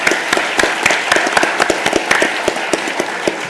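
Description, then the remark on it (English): Audience applause for a panel: many hands clapping in a steady, dense patter with sharp individual claps standing out, sustained at moderate loudness throughout with no voices. “Let's give you a little hand of applause.”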